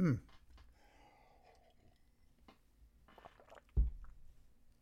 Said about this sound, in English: Another sip.